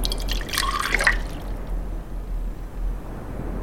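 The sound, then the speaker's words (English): Liquid, a mix of two parts saline and one part water, pours briefly with a bright splashing trickle, then settles into faint dripping and a low watery hiss. Fairly quiet, with no voices. “It was two parts saline, one part water. Trial number one.”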